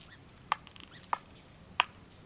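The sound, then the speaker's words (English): Three short, squeaky begging calls from young pileated woodpeckers inside a tree trunk, evenly spaced and fairly quiet, sounding slightly muffled against a soft background hiss. “When you're lucky, you can hear young woodpeckers, like these pileated woodpeckers, begging from within the trunk.”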